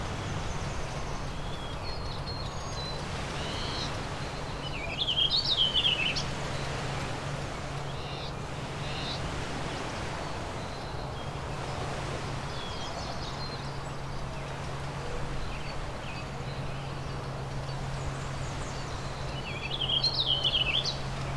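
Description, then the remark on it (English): Songbirds sing: two warbling vireos and a Tennessee warbler, with two brighter, high song bursts standing out over a steady outdoor background hum and fainter chirps. “It's like two warbling vireos and the Tennessee warbler.”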